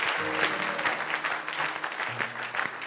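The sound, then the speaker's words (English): A church audience applauds steadily for about three seconds after a prayer, a dense wash of many hands clapping at a fairly loud, even level, with a faint low murmur of voices beneath it. “Put your hands together and make a seat.”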